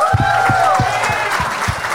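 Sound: audience applause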